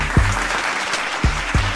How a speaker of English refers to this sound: we gotta give him a little bit of a round of applause